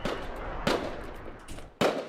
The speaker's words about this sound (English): Fireworks.